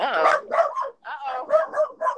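A dog named Walter barks in a quick run of about five or six loud, yappy barks, each separated by short pauses.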